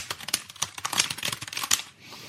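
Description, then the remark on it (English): Rapid, dense clatter of computer keyboard typing, dozens of quick overlapping key clicks, loud and continuous for about two seconds before trailing off into quiet. “And that's the fastest you'll ever hear anyone slap their cock on an ASCII keyboard.”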